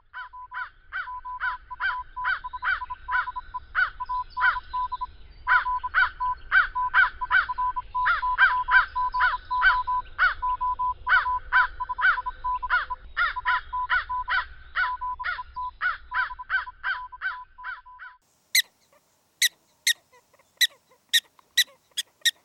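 Prairie dog calls: a fast, steady run of sharp, nasal yips over a low rumble, then a pause and a handful of higher, clipped chirps spaced apart.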